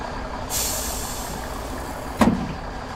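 A large bus pulls up and idles with a low engine rumble as a long hiss of air brakes releases, followed by a sharp pneumatic burst near the end. Fairly loud, with no talking.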